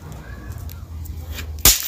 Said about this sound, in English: I just threw a popper right on that piece of plywood right there by the phone, and it landed right there.